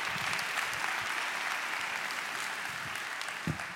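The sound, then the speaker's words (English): An audience gives God a hand clap, breaking into steady, sustained applause, many hands clapping in a dense, even wash of sound that holds at a consistent loudness throughout with no voices. “Come on, can you give God a hand clap for that?”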